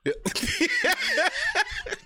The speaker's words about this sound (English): I'm coughing, my bad.